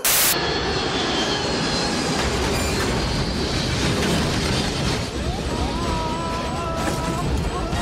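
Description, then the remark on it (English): A loud, steady jet engine roar fills the whole stretch, broad and rumbling, with a high whine rising through it near the end, like a plane, with a Ford stuck on it, powering up to take off again after landing. “I love when, like, she lands the plane and has to take off again.”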